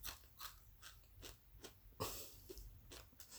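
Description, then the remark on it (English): Crisp crunching of someone biting into fries, a steady run of chewing crunches with one especially loud, exaggerated bite partway through; no talking. “Give me a dramatic crunch.”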